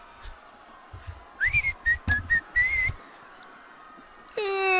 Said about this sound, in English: Give him a whistle to come run. Don't whistle!